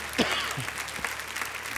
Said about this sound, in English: Give the Lord a clap offering, would you please?